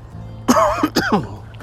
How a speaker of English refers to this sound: This cough will forever be there.